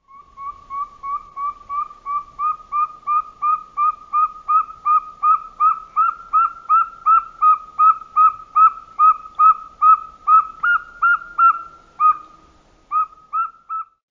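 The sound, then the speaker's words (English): A northern saw-whet owl gives a long, steady run of clear, whistled toots, roughly two per second, repeated evenly for over ten seconds. The notes are fairly loud, with no talking. “And finally, the northern saw-whet owl.”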